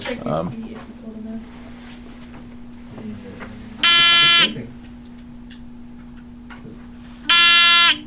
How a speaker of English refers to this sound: Can we have a buzz? Just buzz check, just to make... In case the buzzers quit working.